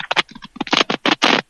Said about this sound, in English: is currently furiously typing to Sid Hartman. He's got a TTY phone.